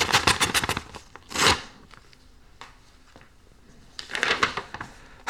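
An envelope holding a hand-delivered letter is torn open: a quick series of crisp paper rips, one louder tear, then faint rustling and a final burst of tearing. No one speaks.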